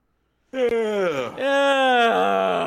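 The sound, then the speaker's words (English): A long, drawn-out vocal yawn from one person, fairly loud, starting after a brief silence and stretching on with a wavering, groaning pitch. “What if I just yawned for the first 5 minutes?”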